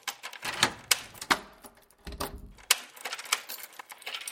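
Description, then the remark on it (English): Many locks on a door turning one after another as Dr. Percolator locks himself in after slamming the door shut: a busy run of sharp metallic clicks, clacks and rattles in an irregular rhythm, with brief pauses between bursts and no voices. “BeeBop heard locks turning.”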